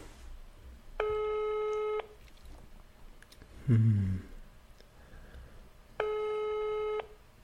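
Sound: telephone call tone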